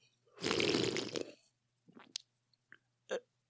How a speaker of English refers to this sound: It looks like a beaker, and it's blue. It looks like blue Gatorade, and I do like blue Gatorade. Huh. I'm going to take a sip of it.